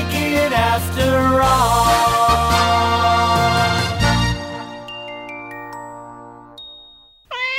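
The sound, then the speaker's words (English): A bright orchestral jingle swells and then fades into lingering chimes, followed by a single short meow from Mimsy the cat, mascot of the television studio MTM Enterprises, as heard at the end of the Mary Tyler Moore show, clear. “I used to hear Mimsy at the end of the Mary Tyler Moore show. Mimsy was the mascot for the television studio MTM Enterprises, which was the precursor to 20th Century Fox TV.”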